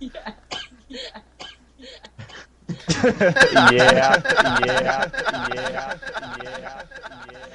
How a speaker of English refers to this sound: The cough.